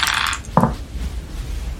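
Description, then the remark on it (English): Dice rattle and tumble across a hard table in a quick clattering burst as players roll for power in a tabletop game, followed by a single sharp knock as they settle, then quiet room tone. No one speaks. “You're going to roll your power. She's going to roll her power. Okay, dice.”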